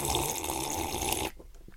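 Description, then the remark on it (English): Loud, close-up sipping and gulping of water by a person drinking near a microphone, a continuous wet slurping rush lasting just over a second before cutting off sharply into near quiet. No talking. “Do you reckon this will gross people out, the sound of me gulping down some water?”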